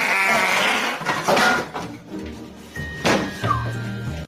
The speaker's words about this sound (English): Whatever he ate regretted going in that guy's mouth, and that was the "why did you eat me" fart.